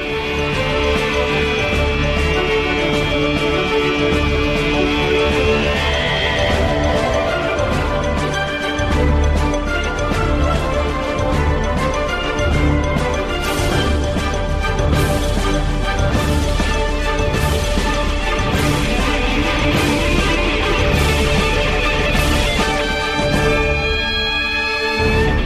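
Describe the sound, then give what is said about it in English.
Upbeat Harry Potter film soundtrack music featuring guitar plays steadily and loudly throughout, with sustained tones layered over busy rhythmic percussive hits. Nobody speaks. “I love that guitar in there. Yeah, it's got a guitar.”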